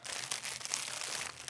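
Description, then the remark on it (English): Crisp, steady crinkling of a translucent, rainbow-coloured plastic package of treats being opened, with bright rustling bursts and small crackles continuing for a second or two, fairly quiet, with no voices. “There's like a very fun like rainbowy package here. Translucent sack.”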